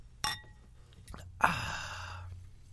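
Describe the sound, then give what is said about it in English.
Two men toast with bubbly drinks in a closet: glasses clink together, a bright ringing tap, followed about a second later by another sharp clink and a soft, breathy hiss that trails off. “Just a couple of buds in a closet with some suds. Cheers. Cheers.”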